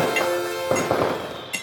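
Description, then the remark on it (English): Several light, ringing clinks of glasses touching in a gentle toast, spaced unevenly over a second or two, fairly soft, with a faint tonal ring lingering between the taps. “I really don't want to hurt these glasses. Cheers. I'm toasting gently.”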